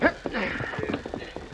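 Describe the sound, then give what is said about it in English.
Riders' horses' hooves clop in an uneven, slowing rhythm as the riders rein up at a hideout several miles from town, with a man's voice calling out over the hoofbeats as they come to a halt. “The hooded men raced to their hideout several miles from town. There they reined up.”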